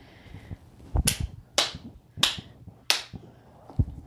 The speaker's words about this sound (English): Like he's being like a hype man, but like his clap is way off of the beat.